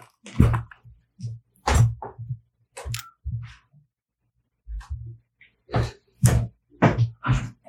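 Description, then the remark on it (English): Someone knocks on a door in uneven clusters of solid thuds, pausing between bursts before rapping again. No one speaks. “Can you guys hit the door?”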